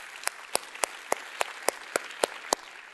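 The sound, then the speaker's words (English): An audience applauds and cheers for students standing for their faith, a dense wash of clapping with about nine sharp, evenly spaced claps punching through in a steady rhythm, fairly loud throughout with no talking. “Can we give a cheer for students to stand for their faith?”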